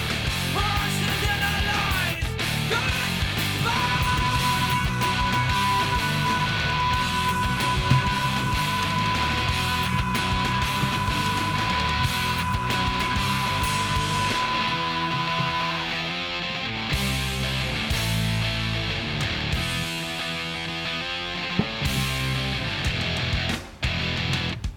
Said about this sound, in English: Sorry, just that ending, that scream.